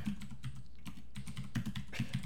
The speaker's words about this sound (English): That was me typing in Amy Coney Barrett.